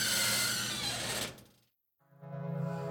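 A door being unlocked with keys: a dense metallic rattle and scrape, a brief silence, then a steady, buzzing mechanical grind with rapid pulsing clicks, fairly loud and with no voices.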